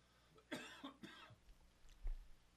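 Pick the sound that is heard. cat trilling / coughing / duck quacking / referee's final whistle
coughing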